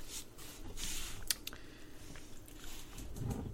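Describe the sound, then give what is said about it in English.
A vanilla cream drink is poured vigorously into a glass, a continuous splashing rush with a few sharper clinks and gurgles, building a big head of foam, heard alone without any talking. “And there he goes, being a fucking savage with that pour.”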